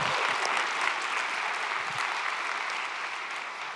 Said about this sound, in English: Thank you guys, by the way. You guys are good. You guys, yeah, give them a quick round of applause.